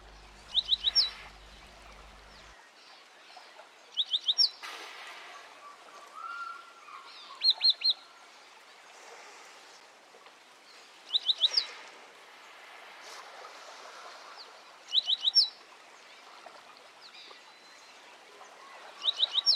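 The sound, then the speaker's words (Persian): Short bursts of bright birdsong repeat roughly every three to four seconds, each a quick run of high chirps, over a soft outdoor background hiss with no talking. “یه نفس عمیق بکش و با چشمای بسته به نغمه های لذت بخش گوش کن.”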